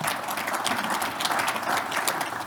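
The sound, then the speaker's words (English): A crowd applauds steadily, many hands clapping in a dense, even wash of sharp claps that holds at a constant level throughout, with no voices standing out. “Yes, please, round of applause.”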